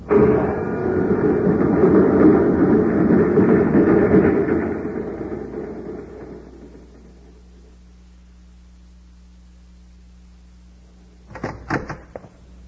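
A loud, broad rushing whoosh of a magnetic car with a self-contained power unit zipping down a shaft holds steady, then fades over several seconds into a low steady hum, ending with a short cluster of metallic clunks.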